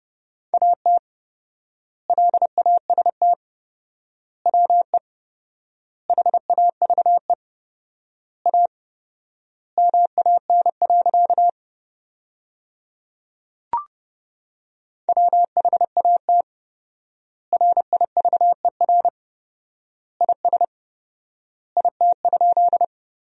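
Morse code sent as a single steady mid-pitched beep at 30 words per minute with 4x word spacing, sentences built from the top 300 words, quick dots and dashes grouped into words with long silent gaps between them, plus one brief click midway.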